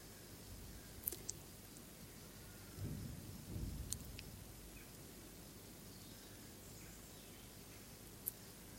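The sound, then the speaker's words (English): Faint thunder rolls low for about a second amid a steady hiss of background noise, with a couple of small clicks before and after. Nobody speaks. “Curious, does it make anyone else smile when they hear the thunder?”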